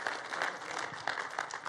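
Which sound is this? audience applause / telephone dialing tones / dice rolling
audience applause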